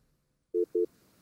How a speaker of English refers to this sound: You got phones that are beeping and everything else.